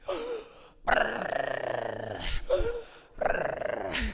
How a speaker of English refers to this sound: Another breath. Breathe. I can hear my speech coach now. They call it machine gun breathing.